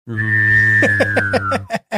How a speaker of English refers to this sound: You'll get a whistling football that sounds just like this.